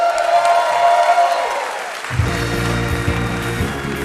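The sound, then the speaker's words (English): A live audience at the Alberta Rose Theater in Portland, Oregon applauds and cheers after a stand-up comedy set in a dense, steady wash, with one long whooping voice held over it. After about two seconds, music with a deep bass line comes in over the fading applause. “That was Marcella Arguello, recorded in front of a live crowd at the Alberta Rose Theater in Portland, Oregon.”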